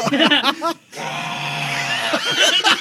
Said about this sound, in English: And I scream back.